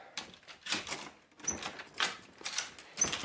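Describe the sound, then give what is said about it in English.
A door being opened: several rattling, scraping bursts in an uneven rhythm with a couple of brief high squeaks, moderately loud, with no one talking. “open the damn door.”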